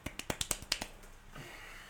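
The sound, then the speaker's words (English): A quick run of seven or eight light, polite golf claps, soft, spaced evenly over under a second before fading into quiet room tone. “Golf clap.”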